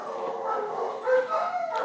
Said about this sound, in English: go quiet those puppies down.